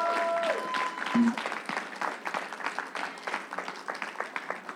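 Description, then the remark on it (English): A church audience applauds steadily, many hands clapping in a dense, rolling wash, with a few brief tonal notes and faint voices underneath at the start. “Let's lift our heads, church. Let's clap it up.”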